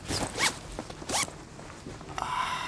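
A bag being unzipped in several quick, rasping pulls, each a bright, scratchy burst, followed by a softer, steadier zipping rasp at the end. No one speaks.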